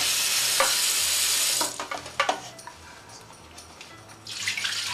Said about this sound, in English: So we'll take care of it and do it in the sink. And now I'm going to take care of the turkey drumsticks. Place them in my bowl that I use. Give them a quick rinse with cold water.